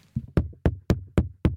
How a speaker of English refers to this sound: Suddenly, there's a knock at the door.